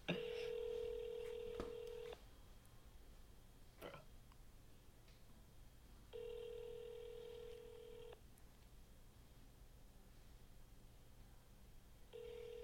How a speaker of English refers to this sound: I'm calling him. Don't make me laugh. We're not going to be able to get a single call done tonight. It's just going to be Absolutely ringing.